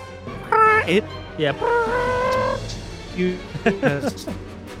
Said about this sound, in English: It sounds very similar to the Dimetrodon's roar.